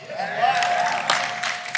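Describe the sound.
An audience clapping and cheering for newly baptized people: a dense, steady wash of applause with scattered sharper claps, voices mixed in, and a sustained high whistle-like cheer partway through.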